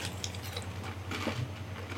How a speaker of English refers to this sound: Y'all hear me eating these goldfish. Listen.